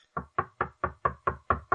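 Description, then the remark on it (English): A soft, steady series of eight knocks on a door, evenly spaced and fairly quick, each a muted wooden thud with no voices around it. “Rapping at our chamber door.”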